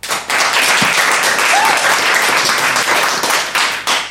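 A crowd applauds loudly and steadily for about four seconds to vote for the more persuasive argument in a debate, dense overlapping claps filling the room, with a brief dip near the end before clapping swells again.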